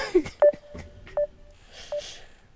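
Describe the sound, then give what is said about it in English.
A phone beeps three times after a call dropped because the other caller lost service, short mid-pitched electronic tones spaced evenly about once every three-quarters of a second, with only faint background noise between them. “It's still beeping.”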